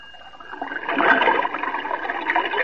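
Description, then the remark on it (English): A steady rush of water spouting from a fire engine to put out a fire in a fire station swells up after a quiet start and keeps gushing loudly, with a hissing, splashing texture and no voices. “Then I spouted water.”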